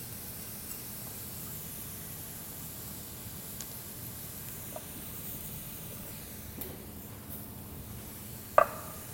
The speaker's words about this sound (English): Okay, while that's cooking, what I want to do is get our muffin tin pan ready to go. A little bit of pan spray, you could use butter to butter this or oil, pan spray works.